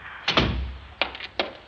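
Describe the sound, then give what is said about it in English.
A door swings shut with a heavy, booming thud, followed by two sharp clicks of the latch settling into place, with no voices. “You close that door now.”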